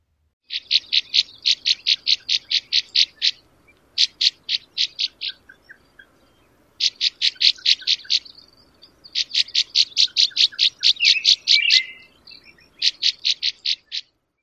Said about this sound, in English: That was the northern rough-winged swallow. Here is their call one more time.